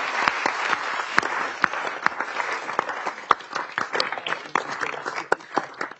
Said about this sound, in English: Starting next year, thanks to Representative Brady and others, single-use plastic bags will be a thing of the past in Delaware. And I think that deserves a round of applause as well.